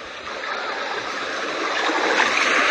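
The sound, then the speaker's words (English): Lake water washes and laps in a steady, continuous rush that sounds like the ocean, moderately loud, swelling slightly toward the end with no voices over it. “Believe it or not, it's a lake.”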